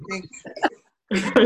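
A person coughs in a short cluster of rough, throaty bursts, then after a brief pause lets out a louder pair of harsh, breathy coughs.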